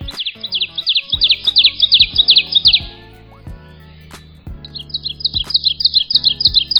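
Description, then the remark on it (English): An ovenbird sings its loud, ringing teacher-teacher-teacher song, a rapid series of repeated two-note phrases that builds in volume, pauses briefly, then starts again over a soft, low musical backdrop. “Here's the typical ovenbird teacher, teacher, teacher song.”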